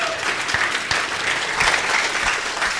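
A church audience claps steadily for a member called up to share a word, a dense wash of many hands with a few sharper individual claps standing out, sustained at an even moderate loudness with no speech.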